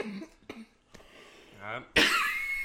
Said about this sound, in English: They can hear me coughing from Antarctica, I'll tell you that.